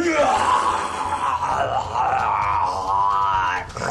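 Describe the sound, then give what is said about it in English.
A person vocally imitates a creature's pained scream, a loud, strained, wavering howl held for about four seconds with no other speech; the creature has been struck by a lightning bolt cast from a wand. “It rears back, flexes, and gives the Hulk pose, and screams.”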